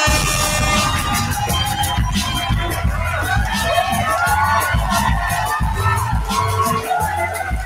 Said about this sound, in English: I throw some extra crowd in there.